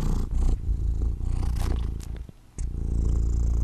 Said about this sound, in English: His purring is actually registering.